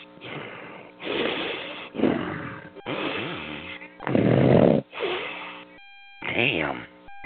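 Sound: loud snoring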